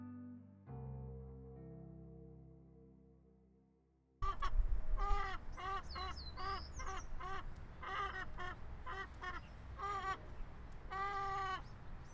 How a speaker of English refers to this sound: That's the sound of chickens on the O'Donohue Family Stanford Educational Farm. Located on the western edge of the Stanford campus, the farm teaches sustainable agricultural practices to Stanford students and the broader community.